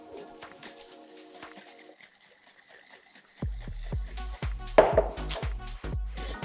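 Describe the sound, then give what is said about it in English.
A container holding sugar and half a cup of boiling water is shaken hard and rhythmically to mix a syrup, sloshing liquid with a quick series of loud knocks and thumps, after a quieter stretch of faint pouring and clinking. “Straight on top of that, half a cup of boiling water. And again, we're gonna give that a shake.”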